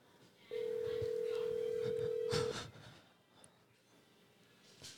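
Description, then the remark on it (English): A telephone line sounds a single steady, low-pitched tone that holds for about two seconds and then cuts off as a call to Santa is placed, leaving faint background noise with a few soft bumps. “Okay, are you ready to call Should we Santa? Call Santa?”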